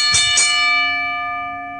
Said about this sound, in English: ring the bell.